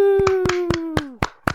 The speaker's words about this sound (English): Welcome to the tribe. Claps for joining.